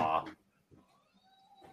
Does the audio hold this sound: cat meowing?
yes